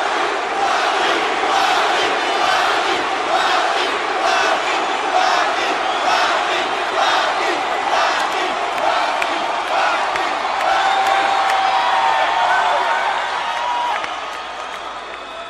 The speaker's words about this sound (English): They're chanting his name already